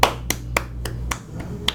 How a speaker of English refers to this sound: We got 1 minute. I'll clap for a minute.